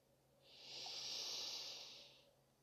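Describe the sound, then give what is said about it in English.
A slow, steady inhale through the nose, a soft airy rush that swells gradually and fades over a couple of seconds, quiet with no talking. “So if you're nice and relaxed, let's begin breathing together.”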